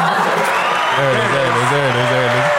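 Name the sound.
applause sound effect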